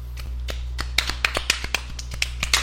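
A light, polite golf clap: a dozen or so soft, crisp claps in an uneven patter, over a steady low hum with no voices.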